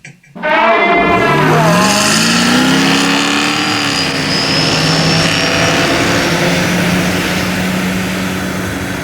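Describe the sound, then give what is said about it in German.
A loud sports car engine revs up sharply, its pitch climbing over about a second, then holds a steady, throaty roar with no one speaking. “Das heißt, wenn Sie das Geräusch eines Sportwagenmotors optimieren, nehmen Sie sich einen Elefanten als Vorbild?”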